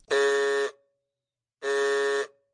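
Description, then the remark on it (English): An approaching motor car's horn honks twice, two loud, steady, brassy blasts of about half a second each, separated by a short pause, with nothing else around them. “he saw approaching him a speck that turned into a dot, and then into a blob, and then into something very familiar, and a double note of warning only too well known fell on his delighted ear.”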